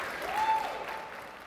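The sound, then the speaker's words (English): A round of applause from an audience for the panelists of a panel session: dense, steady clapping with no gaps, holding at a moderate level for about a second and a half, with a brief thin tone sounding through it early on. “Can we please give a huge round of applause for our panelists, because they came out, busy schedules.”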